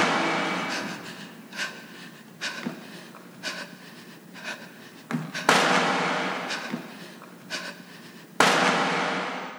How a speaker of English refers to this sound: I will award the LA album points for dropping in gunshots that sound reasonably realistic and not like something out of an old Ninja Gaiden video game. Here are the LA gunshots.